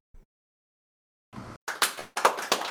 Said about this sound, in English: can we get a round of applause for Orient real quick?